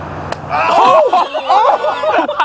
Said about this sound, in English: we put a target on his shirt, too, just to let you know. And I was the one dropping the balloons on him. All right. Here we go. Here's the first one. 3, 2, 1.